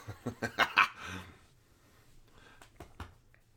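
An excited dog close by lets out a quick run of five short, breathy huffs and whines, then a few softer thumps and scrabbles as it paws at someone.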